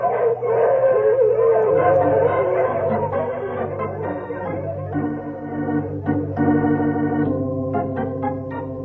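A team of sled dogs pulling a sled toward Cougar Canyon howls loudly and continuously, several voices overlapping in long wavering cries, with short barks and yips breaking in toward the end. No one speaks.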